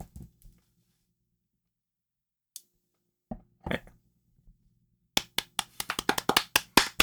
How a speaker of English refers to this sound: I'm gonna clap too.